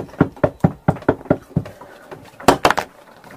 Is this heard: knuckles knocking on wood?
yes